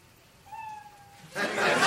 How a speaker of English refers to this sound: And comedians, you know your 60 seconds is up when you hear the sound of a kitty.